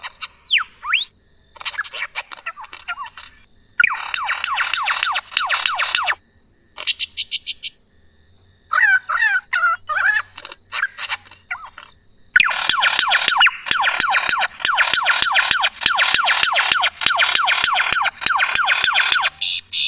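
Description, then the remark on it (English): A lyrebird runs through a rapid medley of mimicked sounds: clicking trills, sharp whistles and looping siren-like sweeps, loud, shifting abruptly from one imitation to the next with no one talking. “Yeah, I'm pretty sure this is the lyrebird.”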